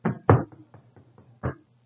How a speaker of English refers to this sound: So you ever get a knock at the door?